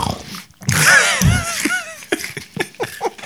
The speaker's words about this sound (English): I'm glad that you can listen to us eat our Maltesers today.